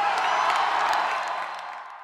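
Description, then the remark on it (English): A large crowd gives a speaker a great reception, roaring with sustained cheering and scattered whoops, a dense wash of voices that holds steady, then gradually fades slightly toward the end. “And I bet they can hear this cheering all the way in Washington, D.C.”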